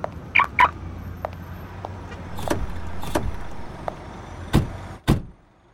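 A car engine idles with a steady low hum while several sharp, solid thumps of car doors shutting ring out, the last one followed by a brief hush.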